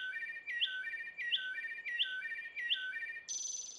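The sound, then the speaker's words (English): A wood thrush sings a flute-like song: five quick, repeated liquid phrases in a steady rhythm, ending in a higher, shimmering trill. Clear, with no voices. “Wood Thrush”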